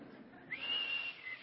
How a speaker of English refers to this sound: See, I can't whistle. I just proved it. I should have just stopped right there with "I can't whistle."